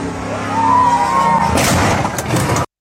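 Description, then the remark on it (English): A truck engine roars with a rising whine as it jumps a ramp, then a loud, harsh crash of metal and debris as it lands and its airbags go off, lasting about a second before cutting off abruptly. “watch these assholes blow up their trucks and have all their airbags go off because they're fucking idiots.”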